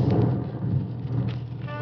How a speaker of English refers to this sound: Beginning to rain.